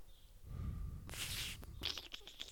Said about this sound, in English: And we're going to breathe out.